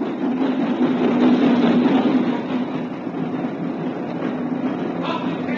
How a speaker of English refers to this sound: At lunchtime, he was sipping an old and mild in the platform buffet when the boat train pulled into the station.